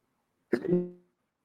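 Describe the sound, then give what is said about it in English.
A single sneeze: a sudden sharp burst of breath that trails into a short voiced tail, with quiet before and after. “Bless you.”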